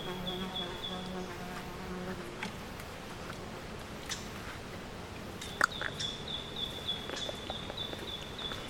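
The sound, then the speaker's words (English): A housefly buzzes with a low, droning hum that wavers and comes in bursts, alongside a faint steady high whine and a few soft clicks and taps. No one speaks. “I can hear the fly so well.”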